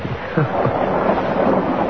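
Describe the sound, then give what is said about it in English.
Steady rain pours over a car windshield in a dense wash of noise while low, rolling thunder rumbles underneath during a lightning storm, holding an even loudness throughout with no voices. “In spite of the rain pouring over the windshield, in spite of the dramatic lightning and the rolling thunder,”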